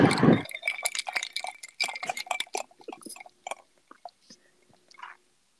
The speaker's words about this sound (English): Today, we're going to be sipping water.